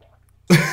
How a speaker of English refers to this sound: The gulp. That quiz took a lot out of you there.